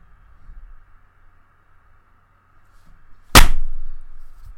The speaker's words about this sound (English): yeah, reach 38, we will all do a clap. Okay.